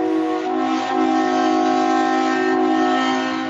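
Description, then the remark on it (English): An Amtrak train horn blares one long, unbroken chord, loud, holding steady for several seconds with no voices around it. “But it's an Amtrak train, and it goes direct from this area that I live in all the way to Chicago without me having to change trains or anything.”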